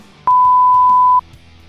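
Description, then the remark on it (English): A single steady electronic censor beep, a pure tone lasting about a second, loud and clean, cutting over the spoken name of a record label with faint background voice around it. “So tell me now and you can beep it.”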